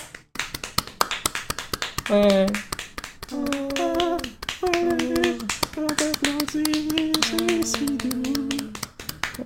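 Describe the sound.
Steady rhythmic clapping runs through the whole stretch, crisp and snappy, while a voice sings sustained tones over it in several phrases, an applause theme song.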